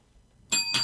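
A bell used to score points during a Christmas story game is struck twice in quick succession, each hit giving a bright, ringing metallic tone that lingers. It sounds fairly loud, with no talking.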